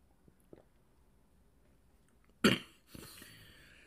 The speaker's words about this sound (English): The gaps in silence are not awkward. It's me sipping my coffee.